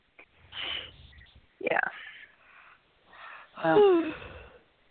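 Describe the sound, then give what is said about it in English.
A person yawns: a long breathy intake, then a drawn-out voiced groan as it ends, with no other talk. “Considering that yawn.”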